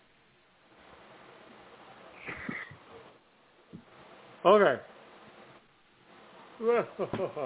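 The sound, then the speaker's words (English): A big, drawn-out yawn with a sliding, voiced pitch rings out loud, followed by a second vocal stretch, amid quiet background talk and a brief spoken word. “There's a big yawn.”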